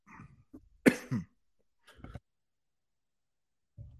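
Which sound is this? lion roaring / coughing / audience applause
coughing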